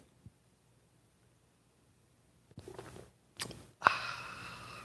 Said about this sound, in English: Fill it with your favorite liquid. I like coffee. And join me now for the unparalleled pleasure. The dopamine of the day, the thing makes everything better. It's called simultaneous sip. It happens now. Go.